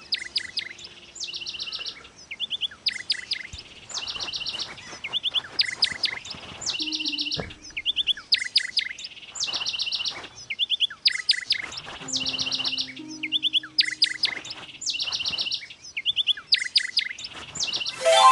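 Bright, repeated bird chirps from a bird that has escaped, in quick bursts and trills, continuing steadily throughout with brief pauses, with a few faint low background noises underneath.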